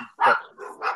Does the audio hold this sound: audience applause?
no